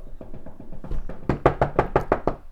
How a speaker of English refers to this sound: Knock on wood if you hear me.